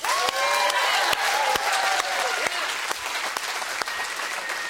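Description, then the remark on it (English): A church audience gives a second round of clapping to give God the glory, loud and steady for several seconds, a dense patter of many hands, with a few whoops and high cheering voices rising over the applause. “I'm going to get you a second trial of clapping.”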